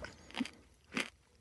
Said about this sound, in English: But then we'd lose the melodic sounds of you chewing. You crunching on trail mix in a desperate attempt to fill your belly with something that isn't vodka.